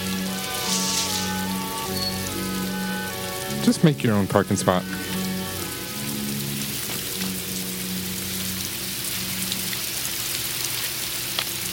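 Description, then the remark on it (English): Steady rain patters on a surface while someone drives in the rain past sheep, a constant hiss under a low engine-like hum, while a man speaks briefly in the middle. “I love the sound of that rain, man.”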